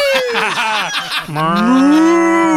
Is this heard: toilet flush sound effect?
no